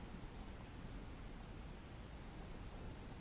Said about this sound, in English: So now when I have to go to sleep, I draw all the curtains to shut out the tacky white street lamp. I turn off all the lights. And I ask Alexa to play the sound of rain.